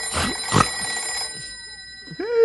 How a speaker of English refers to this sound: It's only the phone.